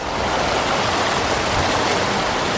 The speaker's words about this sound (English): the creek behind me is raging and it hasn't even reached its peak yet. That's not expected to happen for at least another week, but still it set a record flow last night, 124,000 liters every second.